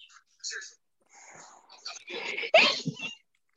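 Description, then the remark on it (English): A single sharp sneeze bursts out after a few seconds of soft, breathy whispering and inhaling, ending with a short exhale. “God bless you.”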